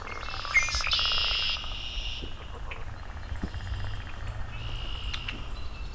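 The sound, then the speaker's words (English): A male red-winged blackbird sings a loud, buzzy trill near the start, followed by fainter scattered chirps and a second short buzz later, over a steady low outdoor rumble. “I have a female red-winged blackbird in front of me.”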